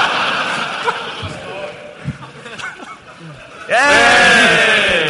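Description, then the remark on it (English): A person imitates a horse's whinny with their mouth up to the microphone, a loud, wavering neigh that bursts in near the end after a stretch of quieter vocal noises and chuckling. “No, putting your horse mouth up to the mic doesn't make it easier.”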